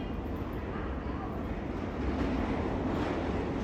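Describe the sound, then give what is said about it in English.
An N subway train rides along the tracks, a steady, loud, low rumble heard from inside the car that swells slightly partway through and continues without a break. “we're right now on the N train”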